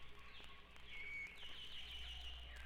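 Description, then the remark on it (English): A dawn chorus of many birds chirping and trilling together in a forest at sunrise, steady and dense, with a faint low rumble underneath and no voices. “The whole forest awakens.”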